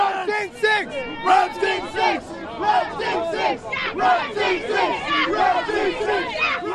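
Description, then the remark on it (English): A large crowd of basketball fans in an arena cheers and yells loudly and continuously, many voices overlapping into a dense roar with rising and falling shouts and chant-like bursts throughout. “And finally, let's just listen to 7 seconds of what the fans had to say.”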